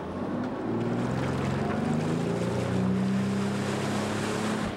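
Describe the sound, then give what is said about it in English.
A boat engine drones steadily and loudly throughout, with rushing water and wind noise from the hull cutting through waves, as the boat carries people to a challenge location on the water. No one speaks. “Okay, because today's challenge takes place on the water, we're of course getting there by boat.”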